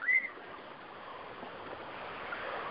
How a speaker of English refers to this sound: So as the waves roll in and wash my feet and splash my legs, as they help center me and ground me, as they help me sink my toes and wiggle my legs into the sand and plant myself further so I don't get knocked over